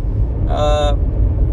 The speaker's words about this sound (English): I'm recording one in the car as I drive home.